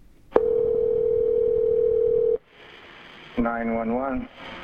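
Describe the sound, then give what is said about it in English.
A telephone line hums with a steady, loud dial tone for about two seconds as a call is placed to 911, then drops to a faint hiss before a voice briefly comes on the line. “They decided to call 911.”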